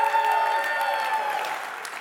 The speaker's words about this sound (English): Hey, welcome to New Life Church. If you're joining us online, this is how we start off every service. We cheer for Jesus. Come on, let's do it one more time if you love him.